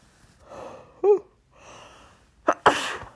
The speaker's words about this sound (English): I'm going to just sneeze right in your ear. I'm not going to edit that out. I'm going to sneeze in your ear.